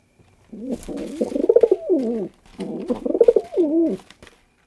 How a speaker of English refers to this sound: So one more time, the soft and easy cooing of the rock pigeon.